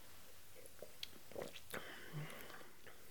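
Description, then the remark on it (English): A few quiet sipping and swallowing sounds of apple cider from a glass, with soft mouth noises and small clicks. “This sort of smells like juniper berries and caramel, but it's definitely time to taste it.”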